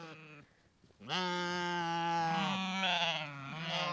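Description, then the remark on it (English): A sheep bleats loudly: a brief cry, a short pause, then a long, wavering, drawn-out bleat that carries on with a quavering, nasal tone; a thirsty flock of sheep at a dry well. “The sheep licked dry stones in despair.”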